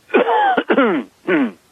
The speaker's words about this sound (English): I don't blame you for coughing, by the way.